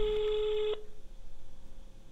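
A single burst of a telephone ringing tone, steady and fairly loud for under a second, then cutting off abruptly into quiet line hiss.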